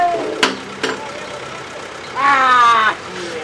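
A loaded truck's engine idles steadily in the background in an industrial area of Little Village near Ketsi Avenue, a low continuous rumble punctuated by two sharp knocks early on, while a voice briefly speaks over it near the end.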